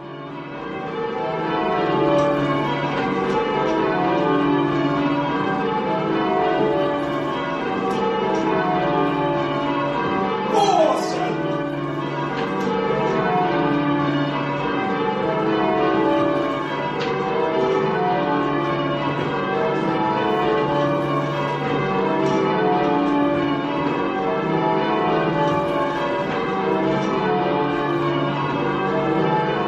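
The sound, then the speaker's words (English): A peal of church bells rings continuously in change-ringing rounds, rung in the Devon style, the tones tumbling in steady repeating sequences, loud throughout with no voices. “What is different about the ringing in this recording?”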